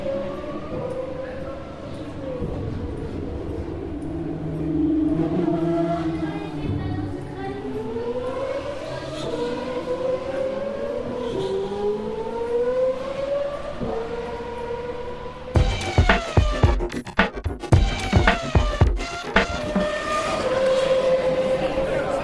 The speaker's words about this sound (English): This is the tunnel underneath the circuit. And if I take my time walking through it here, it's very quiet. I'm the only one in the tunnel. We should get a car going overhead. Here we go. A couple of feet above my head, the GP2 cars.